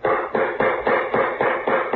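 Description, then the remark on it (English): A door knocker raps about seven times in a quick, even rhythm, each knock a firm, dull, wooden-metal thud, with no voices over it. “Use the knocker.”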